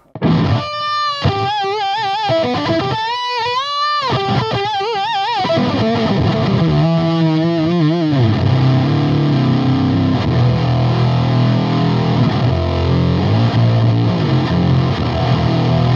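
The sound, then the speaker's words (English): An electric guitar played through a Fastener's fuzz pedal with an octave-up setting at high gain gives a bright, buzzy fuzz tone with a doubled upper octave, starting with a few bent notes and then settling into a loud, sustained chordal wash. “this Fastener's pedal is pretty cool also. It has like an octave up if you want to do the … kind of thing”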